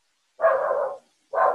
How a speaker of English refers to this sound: Yeah, my dog's barking. In the background. She does that.